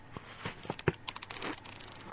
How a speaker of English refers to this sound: I'm drinking a lot of... I've got a lot of water. Hang on, look. This is my new slurp. Hang on a second. Here we go.